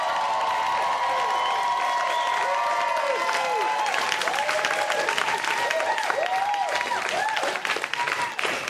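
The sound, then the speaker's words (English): A crowd applauds to pick Harland Williams' Tiananmen Square as a favorite, clapping steadily and loudly throughout, with rising and falling whoops and cheers layered over the continuous clapping, growing more energetic in the second half. “So, with your applause, pick a favorite, starting with Harland Williams, Tiananmen Square.”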